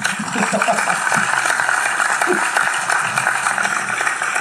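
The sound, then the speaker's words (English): Steady crowd applause fills the whole stretch, a dense wash of many hands clapping at an even, fairly loud level, with faint murmuring voices underneath. “Applaud him.”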